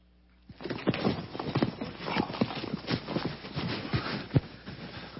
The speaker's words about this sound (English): As you watch this video, I want you to maybe jot down or make some observations about the process that this horse goes through as it is being humbled.